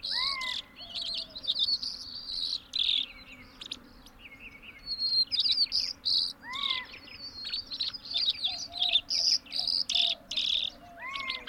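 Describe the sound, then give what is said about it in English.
A white-crowned sparrow sings in rapid, repeated phrases of wavering whistles and buzzy trills, clear, with other birds chirping and a white-winged dove cooing in the background and a faint insect hum throughout. “The wavering whistles and buzzes of a white-crowned sparrow, a species that winters in the Sonoran Desert but heads north to more mountainous habitats in the spring.”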